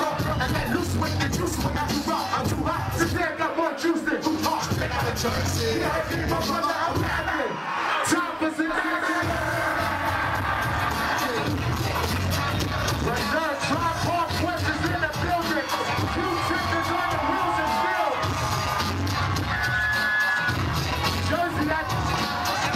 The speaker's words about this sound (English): Yeah, the crowd went nuts.